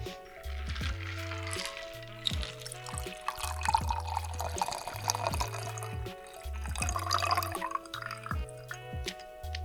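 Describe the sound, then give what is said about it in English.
A shaken classic daiquiri of lime juice and simple syrup is strained and poured into a glass, a steady trickle of liquid with small drips, running under a rhythmic background music track with a pulsing bass line. “And then we're going to strain into our glass.”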